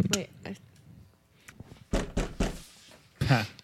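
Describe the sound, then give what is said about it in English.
A few irregular thumping knocks on a door, the raps coming in uneven bursts with short pauses between them and faint background murmur. “We'll just keep making knock noises. Sounds like someone just slap on the door.”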